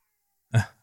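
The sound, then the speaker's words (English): A single short, sharp, fairly loud meow from a cat running all around at 3:46 a.m., rising out of silence and fading quickly, with no voices around it. “My cat is going berserk.”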